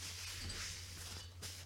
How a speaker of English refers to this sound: That sound you're hearing is me wiping off stout from my hand.